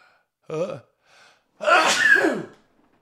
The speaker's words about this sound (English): Because I'm going to sneeze. This is going to be so annoying.